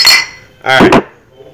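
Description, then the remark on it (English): Two quick bright clinks of containers of a purple drink knocking together during a toast, fairly loud, the first a sharp high ring and the second a fuller knock that fades quickly into quiet. “Let's crack open a little thing of purple stuff.”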